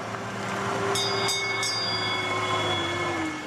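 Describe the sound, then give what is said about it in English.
A small tourist train rumbles steadily along, arriving at Westport House, with a low engine drone, a few bright bell-like tones ringing out, and a faint wheel squeal. “Finally, the tourist train gets to the big house, Westport House.”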